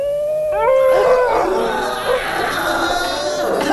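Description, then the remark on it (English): Dogs bark and howl in rising, wavering tones, and the sound gradually blurs into a dense, chaotic wail of human-like screams, loud and sustained throughout. “And then suddenly the barks kind of morph into human screams.”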